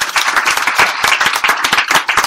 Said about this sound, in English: A big round of applause, you guys. Thank you.